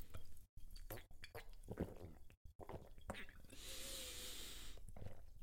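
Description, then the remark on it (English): Someone drinks medium-sparkling water: wet sips and swallows, soft breaths, and a brief bright hissing burst midway, with short silent gaps between the mouth sounds. “being in true German fashion, the sparkling water is a medium sparkling”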